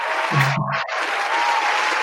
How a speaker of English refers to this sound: You got to hear that cheer.